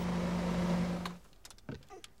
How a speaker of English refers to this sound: At MIRA, the Motor Industry Research Association, manufacturers commission experts to analyse and refine the engine vibration, tyre and wind noise, and engine noise as it's heard by the driver.